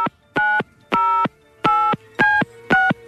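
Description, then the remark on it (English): A monkey at a zoo in California dials 911 on the zoo's cell phone keypad: five loud, evenly spaced touch-tone beeps in a steady rhythm with short gaps of quiet between them. No one speaks. “A monkey at a zoo in California called police Saturday evening after it found the zoo's cell phone and somehow managed to dial 911.”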